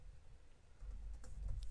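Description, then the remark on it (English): Soft, quick typing on a computer keyboard, a loose patter of light key clicks over a low background rumble, growing slightly busier toward the end. No one speaks. “He's typing almost.”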